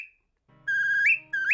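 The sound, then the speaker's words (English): Two loud, shrill whistled notes, each held steady and then sliding upward at the end like a birdcall, a signal to more people who are farther away, with a low steady hum running underneath and no talking. “Like a whistle to a signal for more people who are farther away?”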